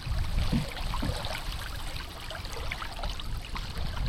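Steady flowing water runs throughout, with a few soft splashy strokes early on, like a canoe being paddled upstream on a river. Close and fairly quiet, with no voices.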